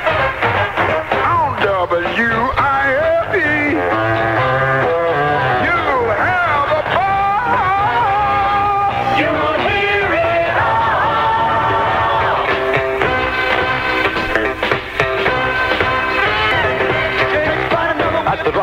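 A soul song plays on the Jay Reynolds Show on WIFE radio, with singing voices riding over a full band at a steady, fairly loud level throughout, with no pauses.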